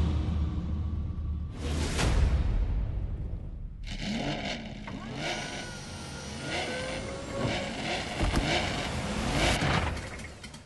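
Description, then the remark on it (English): In a TV show trailer putting rapper Offset in a car, a car roars past with a loud whoosh, then crashes and immediately catches fire in a burst of crashing noise and rumbling engine sounds with dramatic swells, busy, with faint voices mixed in. “Just crashes and sets on fire immediately.”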